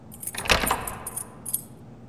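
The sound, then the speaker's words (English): A ring of many keys, kept looped around a woman's belt, jingles and clinks in a short, bright flurry as she locks a wooden divide on a fish tank, with a louder rattle early on and a few lighter jangles after, with no voices. “She drew a short wooden divide across the lower part of the tank, preventing it from moving and obscuring the electrical parts which controlled the heater, and locked it using one of the many keys on a ring that she kept looped around her belt.”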